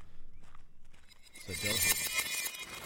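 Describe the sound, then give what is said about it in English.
Footsteps crunch on gravel in the dark, faint at first and then growing louder as they approach, with people talking. “And now you're actually starting to hear some footsteps approaching and the sound of people talking, some feet crunching on the gravel.”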